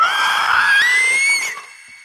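A single eerie, high-pitched creature shriek, loud, rising slowly in pitch for about a second and a half before trailing off into a brief fading tail, heard in the mind just before dawn.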